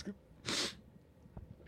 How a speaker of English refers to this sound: Oh, I got to sneeze. Oh.